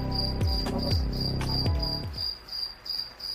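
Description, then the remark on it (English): Crickets chirp in a steady, rhythmic pulse, clear and fairly loud, with a few deep falling tones underneath during the first two seconds and no voices. “Why is he doing crickets?”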